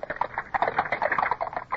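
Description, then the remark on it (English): Horse hooves clip-clop in a steady, quick rhythm as three horses pull a carriage along, the clatter continuous, with no voices. “Up, we're off again with only three horses, sir.”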